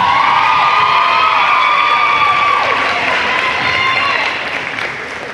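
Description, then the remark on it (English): Loud, sustained applause and cheering from a crowd for the announced most valuable player, with shrill whoops and shouts rising above steady clapping that carries on throughout before easing slightly at the end. “And our most valuable player, hey, I'm just giving an effective applause here.”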